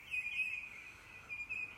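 Birds singing in a thin, high, continuous warble that swells and fades, fairly soft, with no voices over it.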